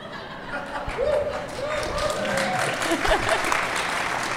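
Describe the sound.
A burst of audience applause, dense and steady clapping that fills the whole moment, with a few murmuring voices and light chuckles mixed in underneath.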